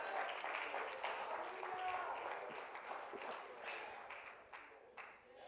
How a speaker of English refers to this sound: Oh, let's clap our hands and praise Him together.